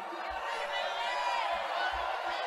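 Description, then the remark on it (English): A large crowd at a rally shouts John McCain's name together, a dense, continuous roar of many voices, fairly loud and steady throughout, with a few low thumps underneath. “You can hear the crowd shouting McCain's name.”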